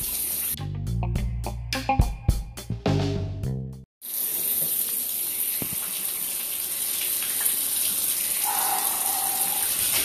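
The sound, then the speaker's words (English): A short musical jingle plays for a few seconds, then cuts to the steady hiss of a cold shower running continuously, loud and unbroken, with no voices. “Cold Shower Talk”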